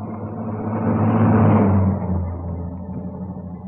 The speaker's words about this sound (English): The timing was perfect. As the car stopped, the first post office van was already approaching.